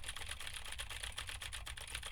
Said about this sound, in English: And again, we're typing on a keyboard with the same switches to see how much of my voice versus how much of the keyboard the SE V7 picks up.